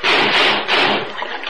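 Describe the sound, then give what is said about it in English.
Loud water splashing and churning in two heavy surges, then settling into a softer slosh as it fades. No voices. “The water drags me down, choking, gasping, fighting my way up.”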